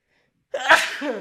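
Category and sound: human body sound, sneeze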